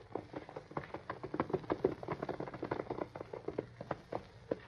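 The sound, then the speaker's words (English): A rider arrives on horseback: horse hooves clip-clop in a quick, uneven stream of hard knocks on packed ground, steady in loudness, with no one speaking. “I want some feed for my horse.”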